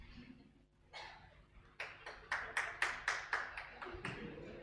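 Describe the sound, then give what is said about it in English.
One man claps during a sermon in a steady, fairly quick rhythm, about eight or nine sharp, bright smacks of similar loudness over a faint low hum. “He's clapping because he probably dreamt the same too.”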